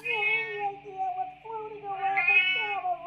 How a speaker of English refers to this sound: Oh, crap, they're here. Talk to them. I got a shuttle full of Terran 5 show cats that just lost artificial gravity.